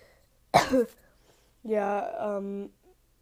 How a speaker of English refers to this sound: I have allergies, which is why I'm coughing so much, and also I have a runny nose.